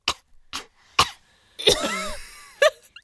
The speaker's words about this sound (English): Your lungs. Yeah. You didn't sneeze. Lungs. You coughed. You coughed. That's what you gotta do.